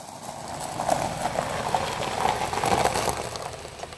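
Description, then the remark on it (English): A brand new truck pulling in, with a steady rough rolling and crunching noise and irregular clattering bursts, moderately loud throughout and no voices. “That is her brand new car.”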